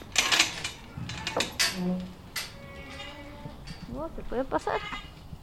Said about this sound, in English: He has a lot of really cute goats. He also has a few cows, chickens, and ducks, and a very noble-looking steed.